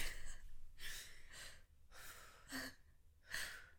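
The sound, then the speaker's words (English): A coughing fit after choking on tea: about five harsh, breathy bursts in quick, uneven succession, with gasping air between them and no talking. “Gage is going to hate editing this bit because I keep having coughing fits”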